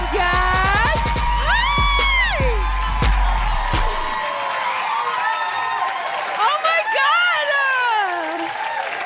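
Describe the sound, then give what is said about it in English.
An audience applauds steadily for Michelle Buteau, host of Late Night Whenever, with loud whoops and yells rising and falling over the clapping. The cheering is strongest at the start and swells again near the end. “Please give it up for Michelle Buteau.”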